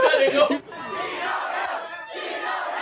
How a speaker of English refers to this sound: And it was like the 7-Eleven near like where everyone where everyone's at. So everyone right. like the news was there. Everyone pulled up. Everyone was cheering.